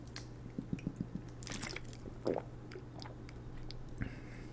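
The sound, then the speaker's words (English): Quiet drinking of water from a bottle: a few soft wet clicks and swallowing gulps, with a fuller gulp midway, over a steady low hum and no talking. “Right now, I might take a sip of my bottle.”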